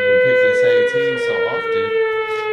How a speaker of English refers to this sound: We ringing that alarm a lot.